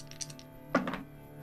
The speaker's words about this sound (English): Double ones. So that is two on the dice plus two is a four.